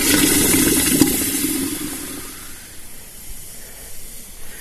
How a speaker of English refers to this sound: And of course, when the shoe was finally ready, we all used to love this, was to dip it in the water to cool it off, because the sound of it, it was something special.